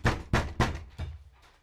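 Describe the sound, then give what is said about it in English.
Four solid knocks on a door in quick succession, the last a little softer and delayed, with a dull low thud behind each rap and no voices. “Someone else is at the door right now.”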